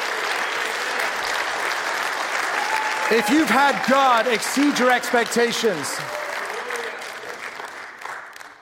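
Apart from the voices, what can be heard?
audience applause and cheering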